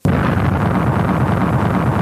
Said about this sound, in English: There was another terrible explosion in the distance.